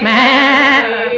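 A single loud goat bleat, a wavering, quavering cry lasting just over a second, heard on its own.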